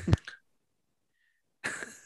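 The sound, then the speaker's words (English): A sharp, explosive sneeze bursts out, followed by a pause of silence and then a second, breathier sneeze with a hissing spray of air. No talking, only the two sudden outbursts. “I'm sorry, I have a sneeze.”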